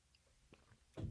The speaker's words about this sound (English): Let me get a quick sip here.